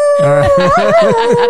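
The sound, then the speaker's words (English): A person imitates a wolf howl, holding a long, steady vocal tone with wavering, yodel-like pitch shifts underneath, loud and continuous throughout. “I howl at the moon.”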